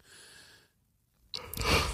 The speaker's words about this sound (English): Oh, sorry, everyone's gone yawn and all of a sudden yawn fest. We're recording this after tonight. Yeah, it's like midnight.